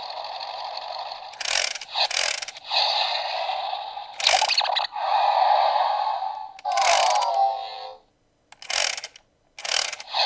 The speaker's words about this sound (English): There's a rearview mirror, and there's a big wheel on the bottom that powers the electronics and some geared resistance. So let's see how that works. Oh, that's loud. So the car starts when you start rolling the wheel.